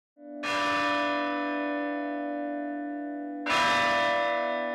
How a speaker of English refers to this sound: The Franciscans were relentless in their devotion. Every 3 hours or so, the church bells would ring to wake the friars so they could do their daily prayers. This went on day and night.